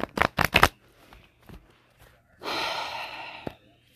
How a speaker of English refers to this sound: I don't know how to really shuffle that well.